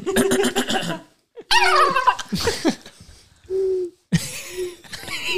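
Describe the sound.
A person imitates a turkey, letting out several loud, rapid warbling gobble calls in bursts separated by brief pauses.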